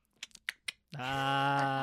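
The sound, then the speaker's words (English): Four quick, sharp tongue clicks in an uneven rhythm, followed at once by a loud, sustained nasal bleat-like vocal tone that holds steady to the end. “No, the click click with your tongue and if the winky.”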